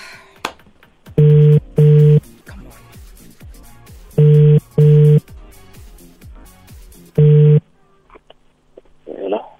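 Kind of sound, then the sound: signal or alarm, phone call ringing tone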